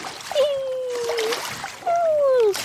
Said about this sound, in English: This is her playing in the water.